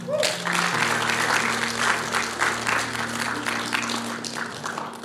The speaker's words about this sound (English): Come on, give the Holy Spirit a clap for a second.